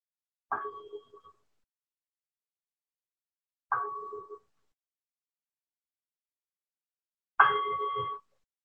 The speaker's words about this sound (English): And practicing in this way until I ring the bell.